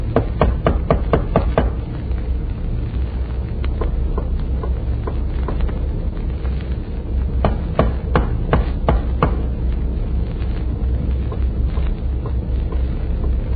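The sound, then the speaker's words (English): Sharp metallic taps on a ship's main bunker hatch, a quick burst of knocks at first, then scattered irregular raps over a steady low rumble, with no one speaking. “I'll tap on the hatch.”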